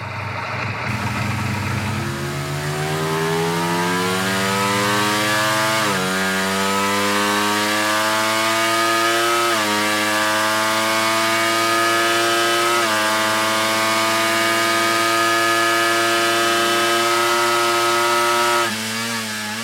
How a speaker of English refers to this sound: where you can see they're actually running it on a bench. And it looks like on a simulator. You know, they were running the engine through its paces, simulating it going through one of the racetracks.